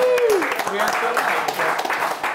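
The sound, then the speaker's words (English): An audience breaks into steady, dense applause lasting a couple of seconds, with a falling whoop at the start and cheering voices mixed into the clapping, as a volunteer is called up to take part in a quiz. “Round of applause for Lee Carr”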